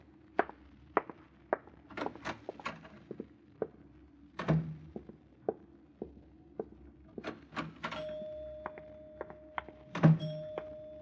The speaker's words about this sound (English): I rang the elevator bell for us.